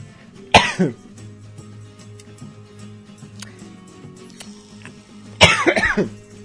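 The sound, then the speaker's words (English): Two harsh coughing fits, one near the start and one near the end, each breaking into a rough throat-clearing rasp, separated by a quiet stretch with faint background ticking. “And every time I open my mouth, there's like this cough almost coming.”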